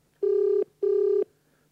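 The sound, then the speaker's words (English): A phone's outgoing ringback tone, calling a man at 4 a.m., sounds twice: two steady buzzing pulses of about half a second each separated by a short gap, clear with a faint hum underneath. “We'll just keep ringing this guy at 4 a.m.”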